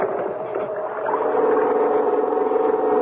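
A small pull-start generator, started with a long, hard pull of its starting rope, sputters to life and settles into a steady, buzzing drone that swells a little louder after the first second and keeps running, with no voices.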